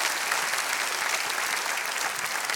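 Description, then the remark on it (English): A church audience claps their hands for members who have served God for 30 years or more, in steady, dense applause, a continuous crackle of many overlapping claps at an even, fairly loud level with no voices standing out. “Wow, can we clap our hands for these that have been faithful for 3 decades?”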